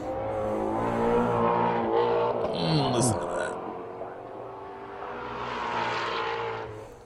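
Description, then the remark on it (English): A powerful 2015 or 2016 Ford Mustang engine roars steadily with a deep, rumbling tone, swelling as it passes by and then easing off, with people talking over it, at the Celebration of Speed in Europe. “It sounds like the devil made the motor. It's the most evil sounding car.”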